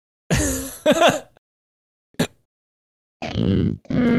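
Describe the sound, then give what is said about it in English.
A voice imitates a demon's growl in a series of loud, rough, guttural bursts: two drawn-out snarls, a short sharp grunt after a pause, then two more sustained growls. No speech. “Oh my god, that sounds awful. Yeah, that's the demon.”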